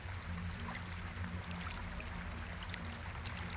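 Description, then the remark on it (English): Steady, continuous rush of water from a city fountain flowing without pause, even in loudness, with a low droning hum underneath and no voices. “The water flows all the time.”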